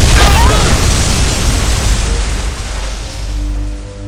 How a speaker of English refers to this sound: The explosion is coming now, and nothing can stop it!